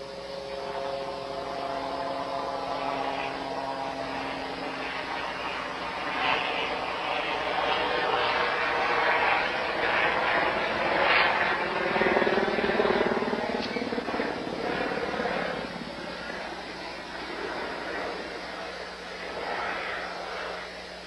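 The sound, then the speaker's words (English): A helicopter drones steadily somewhere in the distance for about twenty seconds, its low rotor hum and whining engine tones swelling slightly in the middle before easing off again. “Oh, so they think that might have been it going over?”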